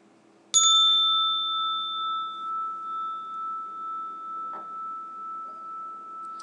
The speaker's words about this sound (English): So let's adjust our posture and then we will hear the bell and we will start to sit.